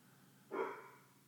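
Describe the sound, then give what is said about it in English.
A single short bark from the speaker's dog rings out against a quiet background, with no voices heard. “My dog keeps barking.”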